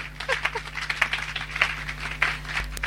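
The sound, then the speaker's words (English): A church audience applauds, a dense, steady patter of many hands clapping for about three seconds at moderate loudness, with a low electrical hum underneath and no one speaking. “I wasn't expecting an applause.”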